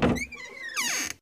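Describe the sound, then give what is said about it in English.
A plastic porta potty door opens with a hollow thunk of the latch, then a drawn-out squeaky creak that bends up and down in pitch, fairly loud. “laughs while opening the door.”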